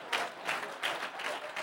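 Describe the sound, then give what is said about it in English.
A crowd applauds itself at the speaker's prompt in a steady, dense wash of clapping, with regular swells in loudness and no one speaking over it. “Clap for yourself, let's go.”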